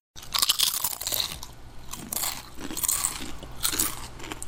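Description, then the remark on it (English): Loud, crisp crunching of someone sitting on a couch chewing chips, a run of irregular bites with bright crackly bursts repeating every second or so, no voices. “So, the other day, I was sitting on my couch eating some chips and thinking about the Big Bang.”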